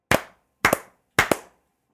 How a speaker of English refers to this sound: Ooh, your video froze when I clapped, so it looked like you fake clapped.